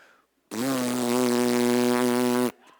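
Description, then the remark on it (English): A loud drag strip racing lawnmower engine, ridden by little boys about 100 yards away, drones with a raspy, steady buzz, starting abruptly and holding one unchanging pitch for about two seconds before cutting off sharply. “I'm like, praise the Lord, the little boys are riding drag strip lawnmowers instead of smoking marijuana.”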